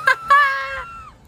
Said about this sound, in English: The person just screaming their fucking head off. That's me.